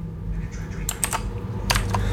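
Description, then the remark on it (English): Clattery computer keyboard typing, a handful of sharp key clicks arriving in two quick bursts over a steady low hum. “This keyboard's loud.”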